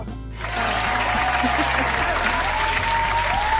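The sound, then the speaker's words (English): A show audience bursts into loud, sustained applause and cheering as a guest is welcomed, a dense wash of clapping that swells in after a brief quiet start and holds steady, with a few whoops rising above it. “Yeah, look at all these people are cheering.”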